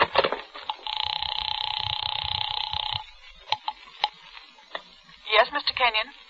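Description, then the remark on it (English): A house phone is used to call an apartment: a steady dial tone hums for about two seconds, followed by a few sharp handset clicks and then a brief burst of voice. “A house phone.”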